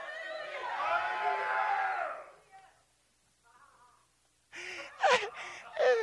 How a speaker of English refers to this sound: I'm going to read it again. I'm going to see if it works. Lift up a great shout of joy to the Lord. Go ahead and do it.